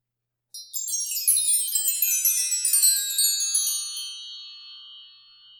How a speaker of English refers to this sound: And our final prompt is the distant wind chime sound.